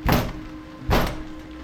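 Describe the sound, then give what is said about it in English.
Two heavy, booming thuds about a second apart, someone pounding on a door from outside during a storm, each with a short resonant tail over a steady low hum. No one speaks. “It's the door.”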